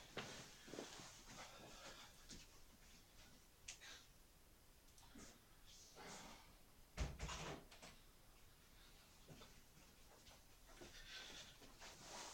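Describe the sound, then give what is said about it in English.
A door is pushed shut with a thump near the middle, preceded and followed by soft shuffling, scraping handling noises and faint footsteps, no one speaking. “I'm just going to close the door again now because the dog's finished doing his business and it's very cold with it open.”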